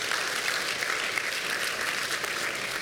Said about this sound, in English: There's time to clap. Okay, you should do that again.